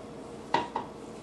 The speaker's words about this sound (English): Absolutely no water in it, there shouldn't be any water. Now mix that in with my meat.